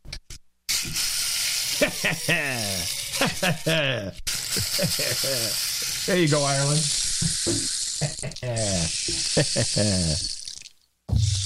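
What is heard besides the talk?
rain stick being shaken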